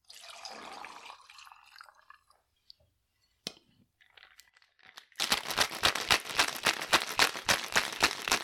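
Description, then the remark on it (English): Rum and lime juice pour briefly into a cocktail shaker with ice, followed by a few light clinks, then ice rattles loudly in a fast, steady rhythm as the shaker is shaken vigorously. No one speaks. “And then you're going to use champagne, but first you're going to pour rum and lime juice into a shaker with ice and shake 40 times.”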